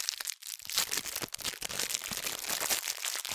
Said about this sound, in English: All right, well, I got to open the cookie first. It's part of the process.